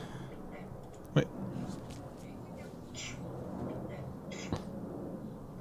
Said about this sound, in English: By the way, I just had to YouTube Japanese sneezing to see if I can hear hakushin.